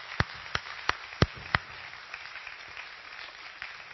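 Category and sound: crowd, round of applause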